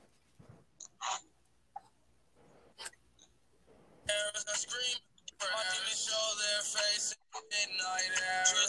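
Tinny rap music plays through a small phone speaker, kicking in after a few seconds of soft clicks and breaths, then running steadily with one brief dropout.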